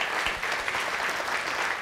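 A crowd applauds steadily, a dense wash of many hands clapping at an even, sustained loudness with no pauses or voices breaking through.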